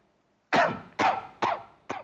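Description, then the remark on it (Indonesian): Four sharp, harsh coughs in quick succession from a sick person at home who still coughs often, each a loud burst fading quickly, with the last one slightly softer. No one speaks. “Dari Martin kata masih sering batuk.”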